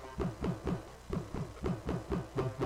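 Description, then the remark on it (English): A synth plays alone in a steady pulsing rhythm, about four evenly spaced notes per second, with a filtered, chorus-thickened midrange tone; the chorus spread is turned down, making a band-pass filter that cuts the chorus's low end so the bass frequencies are thinned out. “you can just turn the spread down, and then it makes a bandpass filter, so you can cut out like the low end of your chorus, so you're not messing with the bass frequencies.”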